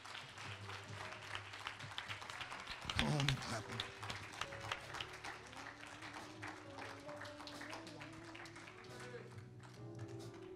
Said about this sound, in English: Come on and clap those hands, saints.